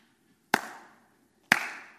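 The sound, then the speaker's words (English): Two sharp hand claps about a second apart by a child walking up and down an aisle, crisp and fairly loud, each followed by a short reverberant ring amid quiet. “He's clapping now.”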